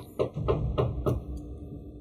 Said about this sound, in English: And he goes through the wall. And then you hear a knock on the door.